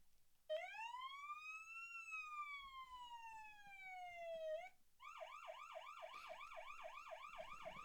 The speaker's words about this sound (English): If we, like, were able to put in, like, these, like, sound effects. How about do fire truck again?